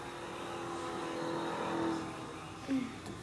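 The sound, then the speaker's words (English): Race car engines drone steadily under a broad roar, with a brief rising rev near the end. The sound is fairly loud and continuous, with no talking. “The engines.”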